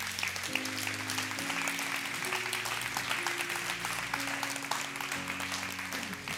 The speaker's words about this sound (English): Don't clap yet. I'm not done.